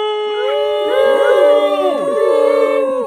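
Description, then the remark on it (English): A crowd of people in the town of Belper, Derbyshire, moo like cows together outside their houses during the daily 6:30 p.m. Belper Moo in lockdown, mooing as loud as they can; many long, overlapping drawn-out calls rising and falling in pitch, loud and continuous throughout. “every evening, during which people stepped outside the houses to moo, and I mean moo!”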